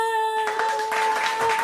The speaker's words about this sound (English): And the crowd goes wild.